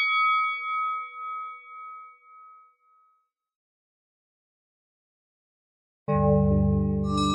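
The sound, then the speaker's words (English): A boxing ring bell dings several times in quick succession, bright and ringing as it fades out. After a few seconds of silence, a loud, full sustained sound abruptly starts. “Well, shit, let's get in the ring. Bro, sound that fucking bell.”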